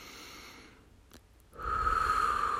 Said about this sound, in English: Let's breathe, and we can use the simple breathing exercise in through our nose and out through our mouth.